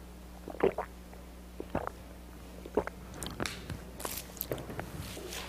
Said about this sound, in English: I made a bracha earlier, I'm just going to have some water here. L'chaim.